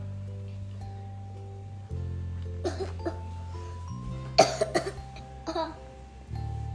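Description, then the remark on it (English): A series of short, sharp, loud coughs in a few quick clusters, over a steady low musical hum in the background. “There's no such thing as a cough at the zoo, so stop coughing at me.”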